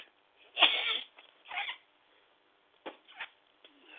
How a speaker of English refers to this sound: Man, it got me in a sneeze that time. Woo!